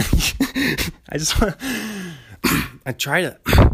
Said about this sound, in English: I've been trying to laugh, and then, not trying to laugh, but, you know, I laugh, and then it just, the cough. It's one of those laugh-chasing coughs. I'm going to start calling coughs laugh chasers.